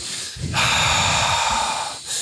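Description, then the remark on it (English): A loud breath pushed straight into the microphone: one long, rough, airy exhale lasting over a second, with a softer rush of air before and after, and no talking. “There were never heavy breaths.”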